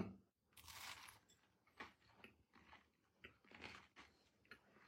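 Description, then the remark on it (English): Crunching as someone bites into and chews a crunchy potato chip cookie: a loud first bite, then several irregular crisp chewing crunches, with no talking. “Oh, that's crunchy.”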